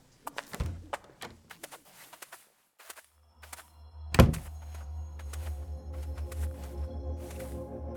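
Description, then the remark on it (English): A door opens with a series of light clicks and rattles, then a single heavy thunk, followed by a low, steady rumbling drone that lingers afterward. No one speaks. “Here, this door.”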